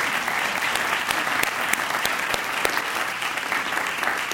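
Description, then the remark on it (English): An audience applauds steadily throughout, a dense wash of clapping hands with a few sharper individual claps popping out above the steady roar. No one speaks over it. “Can we give her a round of applause for that?”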